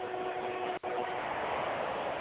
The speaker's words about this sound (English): You hear the train rolling by, crowd making that noise.